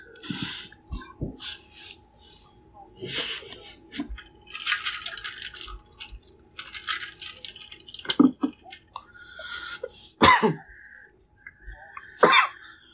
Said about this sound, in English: I'm coughing because I'm dying.